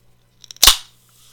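A soda can cracks open: a few small metallic clicks from the tab, then one sharp pop followed by a short fizzing hiss that quickly fades, with no voices.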